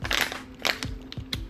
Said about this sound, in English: I had to take a sip of that nice Nestle Pure Life clean water.